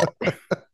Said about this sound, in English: Yeah. There are the burps.